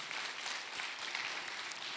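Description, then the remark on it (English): A crowd applauds missionaries steadily, many hands clapping together in a dense, continuous wash of sound, with no voices standing out. “Can we applaud our missionaries? Can we applaud them?”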